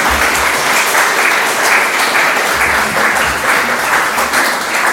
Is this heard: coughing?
no